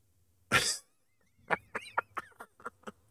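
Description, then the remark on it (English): A woman coughs after smoking a joint: a single harsh, explosive cough, then after a pause a run of rapid, hacking coughs and wheezy gasps, loud and without any talking. “She smoked a bone, and now she's coughing.”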